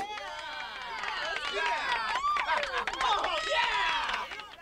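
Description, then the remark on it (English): A crowd applauds, with steady clapping under a dense layer of cheering and whooping voices that keeps going at an even level for several seconds. “How about a round of applause for our sponsors of the Dog Talk Show?”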